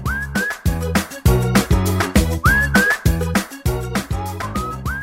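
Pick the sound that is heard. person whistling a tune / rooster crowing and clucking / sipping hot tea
person whistling a tune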